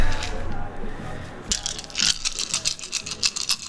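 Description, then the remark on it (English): Eight dice are rolled for a willpower roll, clattering and rattling across a hard surface in a quick burst of clicking bounces that settles after a couple of seconds, with faint room noise before it. “Alrighty, willpower roll. Okay. 8 dice, difficulty 6.”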